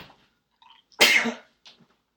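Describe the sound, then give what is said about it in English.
A single sharp sneeze bursts out loudly for about half a second, preceded by a soft intake of breath and followed by quiet stillness. “I didn't realize it was possible to sneeze on the moon.”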